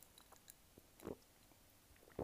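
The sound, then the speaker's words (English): Mouth sounds of someone sipping lemonade, with two distinct slurping gulps separated by quieter wet lip and swallowing noises, heard alone. “As I take a sip of my lemonade, you better know everybody.”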